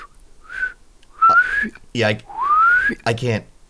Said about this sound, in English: I want to whistle.